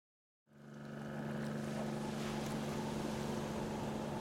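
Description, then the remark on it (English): Strong northwesterly wind and rolling waves with white caps in the Tasman Sea, southwest of Lord Howe Island, fade in after a brief silence, then hold steady and loud, with a constant low mechanical drone like a ship's engine beneath the broad rush. “It's Wednesday, the 7th of October, 1936, and in the vast Tasman Sea, southwest of Lord Howe Island, a strong northwesterly wind whips up waves and white caps.”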